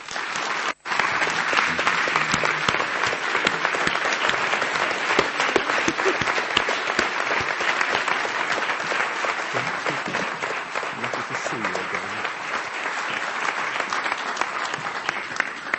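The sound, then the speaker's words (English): A large audience claps steadily and loudly for about sixteen seconds to welcome a guest speaker, a former Olympic pentathlon gold medallist. The applause is a dense, sustained wash of hand claps with no talking over it. “give a warm round of applause to Dame Mary Peters”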